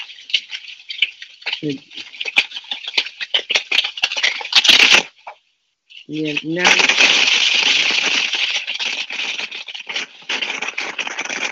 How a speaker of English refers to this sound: Yeah, can you mute your phone, honey? Because I think that static, it may be coming from you.